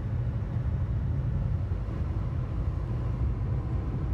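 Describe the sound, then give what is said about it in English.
A military helicopter, thought to be a 60, hanging over the eastern shore; its steady, heavy drone fills the whole stretch, with a deep throbbing rumble low in the mix and a softer hiss above it. No one speaks. “I think that's a military aircraft. I think that's a fucking 60.”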